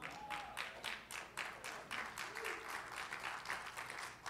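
An audience applauds, many hands clapping in a steady, dense patter with pulsing bursts that keep an even rhythm for several seconds. It is fairly soft, with no voices rising above it.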